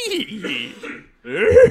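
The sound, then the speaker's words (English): A voice makes a drawn-out, growly vocalization, a Scooby-Doo impression, then after a short pause another person's abrupt cough breaks in, rough and fairly loud, overlapping a voiced sound at the end. “He just coughed during my Scooby, so that's fine, though.”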